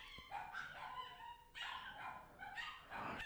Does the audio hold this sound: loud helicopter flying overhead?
no